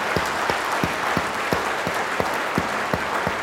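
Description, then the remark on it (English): A large conference audience applauds loudly, the dense wash of clapping punctuated by steady rhythmic thumps about three times a second, with no voices standing out. “So give yourselves a massive round of applause.”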